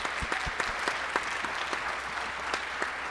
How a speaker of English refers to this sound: Round of applause